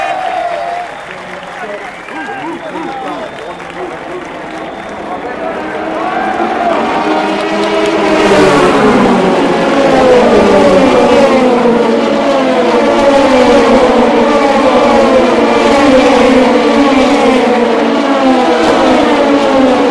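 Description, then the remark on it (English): About 60 race cars with thousands of brake horsepower roar past at the same time at a motorsport race, engines rising and falling in pitch over a loud, sustained wash of crowd noise and applause that swells after the first few seconds. “60 cars who will roar past us at the same time. One of the greatest moments in motorsport anywhere.”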